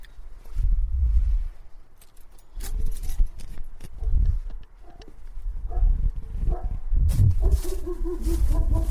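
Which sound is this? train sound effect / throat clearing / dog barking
dog barking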